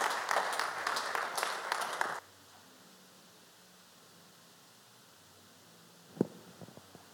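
An audience applauds in a dense burst of clapping for about two seconds, then it stops abruptly, leaving quiet room tone; a single sharp knock and a few faint taps follow near the end.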